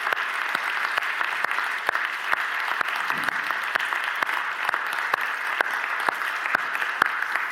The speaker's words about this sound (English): I just want to say a huge thank you to you guys for diligently serving just faithfully week in, week out. Can we just give these guys a round of applause?